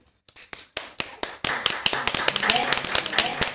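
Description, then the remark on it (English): Hands clap a few times slowly, then quicken into a busy, steady round of clapping at a New Year celebration, with excited voices and general noise rising underneath. “Clap your hands”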